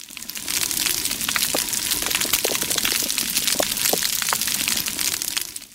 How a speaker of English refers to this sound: We're back underwater again, of all things. Oh. Is that coral growing? That counts. It's coral reef. Wow. The popping and chewing sounds are from like tons of